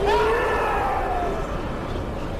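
A man in a film lets out a long, strained scream, with a little extra added to it, that rises quickly, then slowly sags in pitch and fades after about a second and a half, over a dense, rumbling wash of noise.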